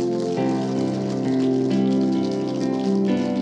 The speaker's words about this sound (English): Come on, let's give those people and our God a round of applause.